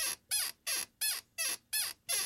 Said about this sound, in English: We put a mic to the chair. I rock that, back and forth in the chair.